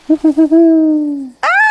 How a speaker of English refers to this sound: The sudden call of an owl nestled into a notch in the trunk startled Artemis, and she lost her footing.